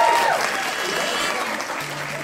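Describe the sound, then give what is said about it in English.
An audience at a storytelling night in London applauds everyone who spoke, a dense, even patter of many hands clapping at a fairly loud, constant level throughout, with faint tonal hums mixed in. “Give everyone a round of applause that spoke tonight.”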